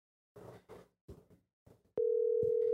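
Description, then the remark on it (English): A steady, fairly loud telephone ringing tone begins partway through and holds to the end, an outgoing call to a caller ringing out, after a few brief muffled bursts of sound. “All right, so we're going to call our first caller. Hopefully they answer because they left their phone number a long time ago.”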